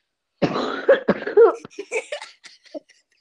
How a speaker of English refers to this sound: Half this podcast is me coughing.